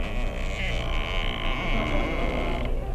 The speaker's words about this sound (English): Oh, that was just the door.